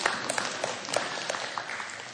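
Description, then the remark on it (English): An audience applauds for the speaker's mother's 81st birthday, a dense, steady wash of many hands clapping at once with scattered sharper claps poking through, holding at an even, moderate level throughout with no talking. “You can give a clap.”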